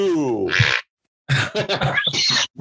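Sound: fart noise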